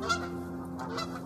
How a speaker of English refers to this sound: I hear these ducks out here. I'm sitting outside, y'all.